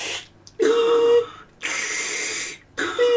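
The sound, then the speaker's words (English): A voice mimics a mechanical breathing machine: rhythmic wheezing hisses with a faint whistling tone, three breath-like pushes separated by short pauses. “5 to 10 seconds, it just sounds like a fucking, like, breathing machine, whatever they call them. Like an iron lung?”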